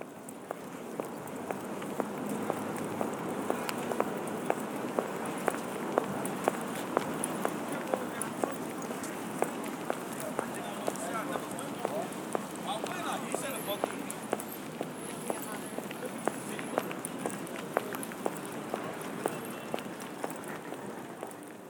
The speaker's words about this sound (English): I really like the sound of footsteps.